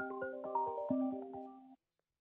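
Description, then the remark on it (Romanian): A phone ringtone for an incoming listener call to a call-in broadcast: a quick melodic run of bright electronic notes, clear, playing for under two seconds before cutting off abruptly into silence. “Uite, a și venit următorul telefon.”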